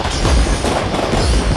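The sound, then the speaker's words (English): Fireworks explode a few days after New Year in a dense, continuous barrage, deep booms rolling over a constant crackling wash. The bursts are loud, with no clear gaps between them. “I didn't know you liked fireworks.”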